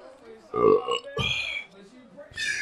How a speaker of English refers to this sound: I got a burp.